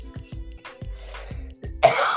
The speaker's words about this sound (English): Excuse me, of all places, I want to cough today.